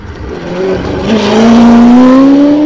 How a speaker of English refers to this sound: So for those of you, here's Rob Sherrard in the GD40. Chassis 1109. Same car we raced at Buller a couple of weeks ago.